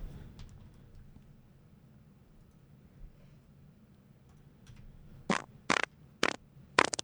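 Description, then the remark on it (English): After a stretch of low background rumble, a run of four or five loud, sharp fart sound effects blurts out in quick, uneven succession near the end, with no talking. “Let me hear some fart drops.”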